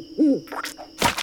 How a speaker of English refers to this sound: Gotta do something to keep those owls out. Poop everywhere. That's right, I'm talking about you, you feather brains.